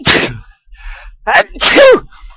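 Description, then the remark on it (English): Loud sneezing: a sharp breathy burst, a short pause, then a wet, forceful sneeze ending in a voiced, falling tone, with quiet breathing in between. “You know, they say that sneezing is one of the most dangerous things you can do while driving because it takes up your entire attention.”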